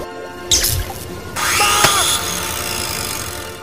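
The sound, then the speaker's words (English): An electric water bath switches on with a sharp clunk, followed by a loud crackling buzz and a rising whine that fades into a steady electrical hum. “Turn on the electrified water!”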